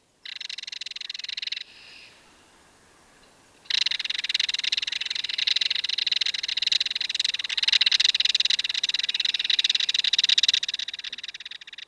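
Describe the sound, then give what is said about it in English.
A belted kingfisher gives its harsh, dry rattle: a short burst, a brief pause, then a long, steady, rapid clatter lasting several seconds, loud and unbroken, with no voices. “It's our belted kingfisher.”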